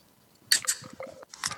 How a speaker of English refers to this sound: See if I can get some pour sound here.